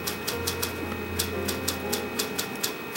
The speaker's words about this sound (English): Do you mind having the sound of the typing? Because you're probably going to pick it up.